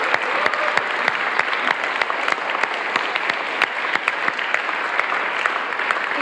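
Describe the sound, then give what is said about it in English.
A crowd claps steadily for several seconds at an evening theology school session, thanking a speaker. It is a dense wash of many hands with sharp individual claps popping out, holding an even, fairly loud level throughout with no voices on top. “But should we just give him one more round of applause to say thank you so much?”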